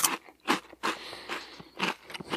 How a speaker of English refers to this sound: he brought me a Cheeto. He brought me a crunchy Cheeto. You guys want to hear this?